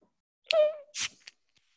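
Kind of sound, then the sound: food or drink, beer being cracked open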